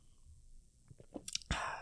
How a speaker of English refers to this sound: Take a sip. Liquid IV. Enjoy.